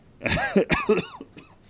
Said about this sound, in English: My coughing.